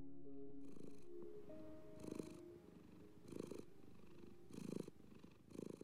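A cat purrs steadily, each breath cycle swelling into a rough, rhythmic rumble about once a second, with low tonal hums running beneath.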